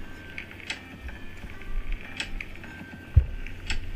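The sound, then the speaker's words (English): A bottle of tea being opened: a few ratcheting clicks from the cap being twisted, spaced about a second and a half apart, and a dull low thump near the end. No one speaks. “I'm gonna tell you all about it as soon as I pop open this tea and try some.”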